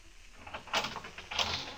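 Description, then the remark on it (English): A door is opened, with two short rattling, scraping bursts of latch and hinge noise, quiet, and no voices. “Open the door.”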